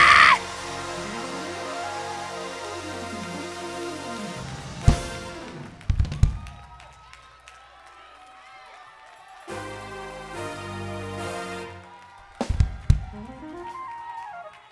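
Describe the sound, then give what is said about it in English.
A crowd erupts in loud, sustained screaming and cheering, with sharp bursts and claps rising over the din, swelling twice over several seconds before easing back. “Let's scream at me!”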